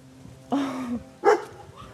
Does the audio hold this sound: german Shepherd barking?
yes